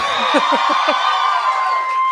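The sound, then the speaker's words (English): An audience cheers loudly and steadily, a dense wash of crowd noise with a handful of quick, rising whoops near the start before it settles into a sustained roar. “that's right, cheer for her.”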